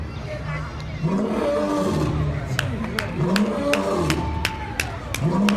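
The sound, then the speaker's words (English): A large crowd of voices roars together in imitation of lions, swelling in repeated loud waves with sharp claps or shouts punctuating the continuous, dense din. “So he's saying, get up, get dressed, and begin to get your roar back. Give me my roar. Give me my roar. Come on, give me some volume.”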